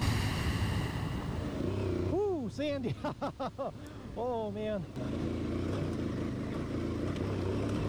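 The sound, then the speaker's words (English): Loud, continuous motorcycle engine roar from a stock exhaust, a deep rushing induction drone that holds steady throughout, with a few brief vocal sounds rising over it midway. “And it's not the exhaust you're hearing. It's the induction.”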